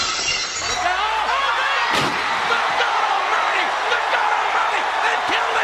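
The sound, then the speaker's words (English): A sharp, loud crash of shattering glass, signalling Stone Cold's arrival, rings out near the start, followed by a long, bright spray of tinkling fragments over a steady roar of crowd noise. “Just, like, glass shatters.”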